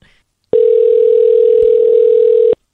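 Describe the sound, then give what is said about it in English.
A loud, steady telephone tone sounds without a break for about two seconds as someone places a phone call, then cuts off abruptly, alone with no voices. “Now I'm going to be like drunk dialing”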